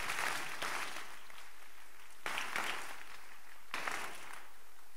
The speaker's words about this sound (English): You're clapping. You see.